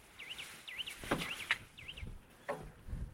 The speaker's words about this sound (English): So in front of me are some big lagoons full of water, and then lots and lots of marshland, loads of mallards right below me. You can hear a bit of wader action.